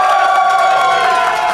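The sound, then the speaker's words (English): A large crowd cheers and claps loudly for a couple of seconds, a dense, sustained roar of voices and applause with no pauses, clapping as a vote for Panda Express. “If you wanted to be Panda Express, clap for Panda Express.”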